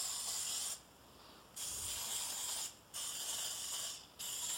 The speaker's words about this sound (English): I think I'm just going to spray. I only have 12 of these fancy little muffin tin liner things. So I think the rest, I'm going to spray a second muffin tin for that.